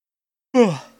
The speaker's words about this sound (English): Sorry for yawning. You're fine, it's late for you.